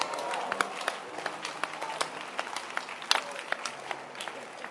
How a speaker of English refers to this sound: Let's clap our hands and welcome Reverend Albert Akins to explain. He's a teacher.